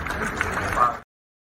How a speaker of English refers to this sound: So applause at the end of that.